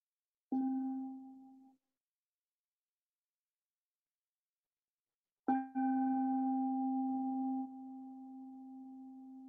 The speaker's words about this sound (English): I'm going to try to invite a bell, and I don't know how it's going to come off with the microphone, but we'll see.